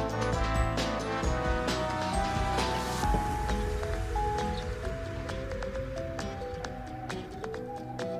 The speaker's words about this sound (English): So it's very windy here. I feel like storming or something. I don't know.